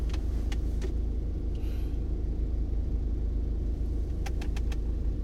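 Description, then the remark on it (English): A blue bus's engine rumbles steadily and loudly, a deep continuous drone with a few light metallic clicks and jingles scattered over it; nobody speaks. “Another blue bus?”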